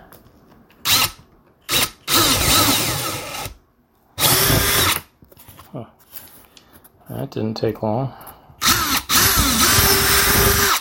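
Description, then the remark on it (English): A power drill bores holes into a door along the edge of a tape template in several loud, whining bursts, short at first and then longer and steady, with a man speaking briefly between runs. “It says half inch, but 5/16. That's good. As long as I don't go over the edge of the template, I should be fine.”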